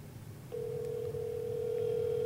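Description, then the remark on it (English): A steady electronic phone tone, a test call ringing through a speakerphone, starts after a brief pause and holds continuously to the end over a low background hum. “It's not ringing to my end.”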